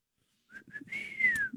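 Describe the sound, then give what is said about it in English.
A person whistles loudly through their lips to call a child: two quick short chirps, then a long sustained note that bends gently downward at the end, clear and alone with no talking. “Some people had special whistles.”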